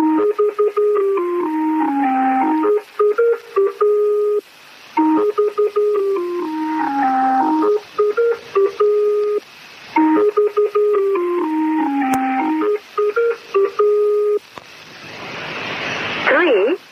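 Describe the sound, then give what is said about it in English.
Shortwave radio interference from someone playing with a shortwave radio: warbling, whistling electronic tones rise and dip in repeating cycles over a steady crackle, ending in a loud rush of static hiss. “Just playing with my shortwave radio, and screwing with you guys.”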